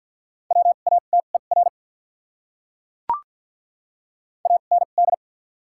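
Rapid Morse code at 50 wpm sending common English words with doubled character spacing: short, steady mid-pitched beeps in quick dot-and-dash groups, two separate bursts with a pause between them broken only by a single sharp click.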